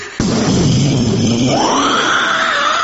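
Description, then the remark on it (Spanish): A voice imitates a loud thunderclap on request, a sudden onset followed by a sustained, rough rumbling roar with a rising and falling growl lasting nearly three seconds, with no other talk. “Si oye un fuerte trueno, haga un fuerte trueno, por favor.”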